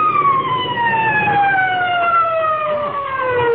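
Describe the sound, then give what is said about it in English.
A police car siren wails loudly and steadily, its pitch sliding slowly downward over a few seconds, with a faint low rumble of traffic underneath. “I can still hear them sirens. Listen.”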